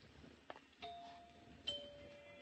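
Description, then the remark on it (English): A house doorbell chime rings two sustained, bell-like tones, one after another, each ringing out and fading slowly against a quiet background, preceded by a faint click. “Nice chimes. Pretty.”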